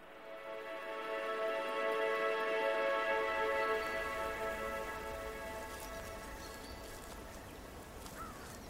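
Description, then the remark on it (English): Steady rain patters on a surface, a dense continuous hiss that swells early and then holds. A low sustained tonal drone hums beneath it, fading as the rain takes over. “And they didn't plan for the rain.”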